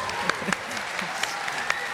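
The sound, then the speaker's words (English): An audience claps steadily for an audience member's job as a city transportation engineer, a dense wash of many hands with a few sharper individual claps standing out, sustained at an even, moderate loudness throughout. “I mean, that sounds good, but I wouldn't ever think to applaud it until I knew more.”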